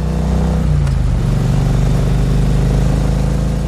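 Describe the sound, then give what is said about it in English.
A motorcycle engine hums loudly while riding on a curvy mountain road. Its pitch drops briefly near the start as the rider shifts, then holds a steady drone with wind rushing underneath. No one speaks. “So here we are on a curvy mountain road.”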